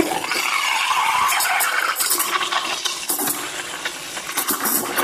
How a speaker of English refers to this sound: Now I have to just turn this little dial to get rid of the excess water and start the steam. Yeah, done that. Now, milk jug underneath the steam frother.